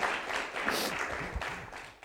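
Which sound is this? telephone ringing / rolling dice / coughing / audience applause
audience applause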